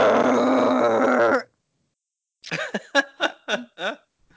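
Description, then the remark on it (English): A puppy named Kona lets out a rough, sustained growl, then after a short pause makes a quick run of five or six short grunts and little growly yips. “Where'd you come from, you little pup?”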